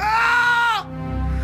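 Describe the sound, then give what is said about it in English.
A man lets out a loud, strained, raw scream of terror, lasting just under a second before cutting off sharply into a low background rumble. “He crowed, and I screamed again in absolute horror.”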